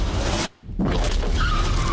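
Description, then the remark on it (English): A car roars and skids loudly in a chase scene from a trailer for Sony's Kraven film, a dense, harsh rush of engine and tire noise that cuts out briefly for a split second before surging back, with no talking. “Like chasing down a car.”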